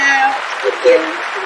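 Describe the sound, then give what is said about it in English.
Hands clap in a quick, steady patter that fills the whole moment, moderately loud, with a few brief vocal sounds rising faintly underneath. “Oh, I got a hand clap.”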